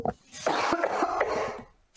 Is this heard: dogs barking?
no